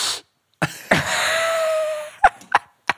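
Someone sniffs a black pen: a brief breathy puff, then a long drawn-in inhale with a faint whistling tone, followed by three quick sharp sniffs. No one speaks.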